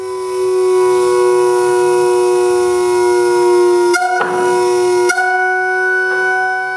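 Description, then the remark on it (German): A steady, loud tone from a Hermann von Helmholtz siren, a type he built around 1850 in Berlin and blown by an organ bellows. Rich in harmonics, it sounds alone, holding pitch and then shifting abruptly twice to new chord-like tones, with no talking. “Und diese Hermann von Helmholtz-Sirene, die kann zum Beispiel so klingen.”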